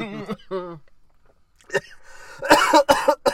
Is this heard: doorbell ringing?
no